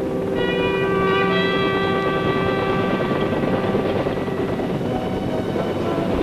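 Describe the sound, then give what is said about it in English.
An armed military helicopter roars steadily, its loud engine drone carrying a high turbine whine and a dense rumble that never lets up, with no voices. “just as there is a strong case for the importance of the armed helicopter in this new kind of warfare, whose ingenuity is typically American.”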